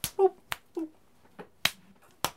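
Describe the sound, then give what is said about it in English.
Two people slap each other in the face: four sharp, crisp slaps land at irregular intervals, each a loud bright smack, with brief vocal grunts or murmurs between them. “They just slapped each other in the face a few times.”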